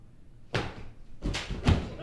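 A sharp slap-like smack, a stage combat knap made by a performer faking a punch to the face, followed about a second later by a couple of duller thumps and scuffling as the partner reacts and falls to the ground, knocked out.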